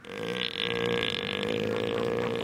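An elephant seal gives a deep, guttural bellow, a loud, steady, belch-like rumble with a throbbing buzz that holds for a couple of seconds without pause.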